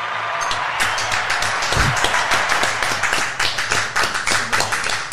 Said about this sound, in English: Let's give him a round of applause for the show, yeah?